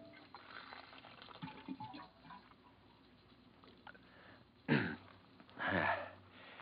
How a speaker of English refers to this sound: Hang up your hat and go over to the water cooler for a drink.